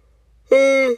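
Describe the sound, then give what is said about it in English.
A short voiced yawn, a steady, fairly loud held tone lasting about half a second that starts abruptly and then cuts off, with no talking around it. “So yeah, hold on, I'm gonna yawn too.”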